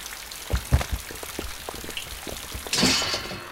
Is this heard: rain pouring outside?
yes